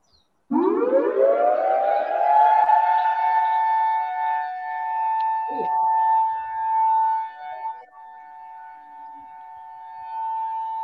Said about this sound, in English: So I do have a clip here. Let's check this out. So this is an example of what the siren sounds like on Maui.